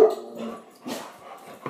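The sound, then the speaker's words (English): A dog barks in a few short, separated bursts, some with a high, yipping edge, with no one talking over it. “Hey, we're back after our dog technical difficulties.”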